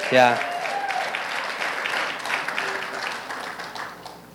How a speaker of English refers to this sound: That's exciting, isn't it? Yeah. You can clap for that.